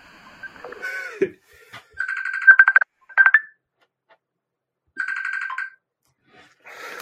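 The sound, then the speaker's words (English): A mobile phone ringtone plays in short repeating bursts of bright electronic tones, fairly loud, with brief pauses between phrases and no one speaking. “I'm just going to turn my phone off, okay?”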